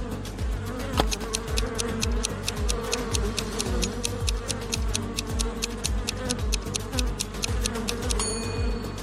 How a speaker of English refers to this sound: But bees seem to be angry. They'll most likely go after you.